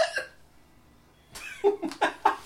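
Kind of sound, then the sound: human body sound, hiccup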